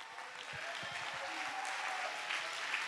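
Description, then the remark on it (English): A large church audience claps steadily and densely throughout in response to the preacher's call to clap, with scattered cheers and shouted voices mixed into the continuous roar of applause. “I wish somebody would lift up your voice and clap your hand.”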